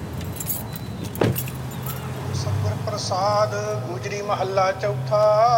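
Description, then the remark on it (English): Keys jingle as a man gets into his car before sunrise, followed by a single sharp thump like a car door, then a steady low engine hum with a melodic, voice-like tone of early morning prayer rising over it. “Every morning, he'd wake up before sunrise and get behind the wheel of his car.”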